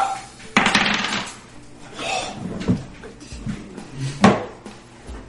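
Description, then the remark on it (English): Dice are rolled for a strength check, clattering across a hard tabletop in a sharp rattling burst followed by a couple of smaller knocks and a final loud tumble, with faint murmuring in the background. “Roll a strength check. You roll a strength check.”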